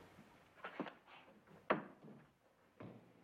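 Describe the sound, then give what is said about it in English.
A door is pushed shut, with a few soft wooden bumps and shuffles followed by one sharp, solid thud as it closes, with no talking. “close that door.”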